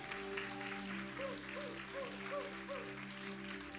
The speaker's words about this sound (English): This is his first time preaching in front of big church stage this morning. So I want you all, come on, let's stand up and let's give him a hand clap of praise this morning.